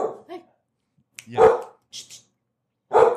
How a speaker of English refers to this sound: Can you hear that? Yeah, I can hear that. That's dogs. We have that. Is that Kona or is that Shadow? It's Kona. Kona's a little princess. Kona is a princess dog.